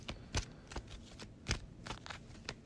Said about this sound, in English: All right, that's all shuffled.